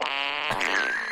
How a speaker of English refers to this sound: Let me try this again. Hang on. Okay, Google. Make a fart noise. This is a fart.